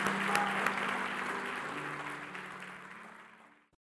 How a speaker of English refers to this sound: Now let's give the Lord a great big hand clap.